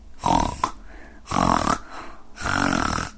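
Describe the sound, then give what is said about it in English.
A voice imitates Mrs. Bear snoring in a bedtime story: three rough, rasping snores in a slow steady rhythm, each lasting about half a second with brief quiet breaths between, prominent. “Mrs. Bear fell asleep. Mr. Bear didn't. Mrs. Bear began to snore.”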